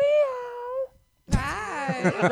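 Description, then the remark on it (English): A person imitates a cat's meow: a drawn-out, descending mewing tone, a brief pause, then a louder, warbling yowl-like meow, clear with no other talk. “Was that a cat call? I liked it.”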